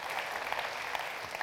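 Steady applause from an audience fills the moment, a dense wash of many hands clapping at once, moderately loud and sustained without any voices over it.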